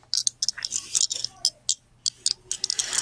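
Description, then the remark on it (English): Dice rattle and tumble across a board, a quick irregular clatter of sharp little clicks coming in bursts for a few seconds. “And then we got, what are these again? Dice. We got dice.”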